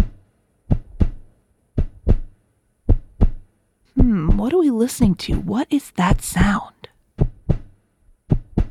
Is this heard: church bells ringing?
no